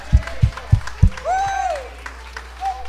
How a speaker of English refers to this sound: Come on, won't you clap your hands for the gift of the Holy Ghost right now?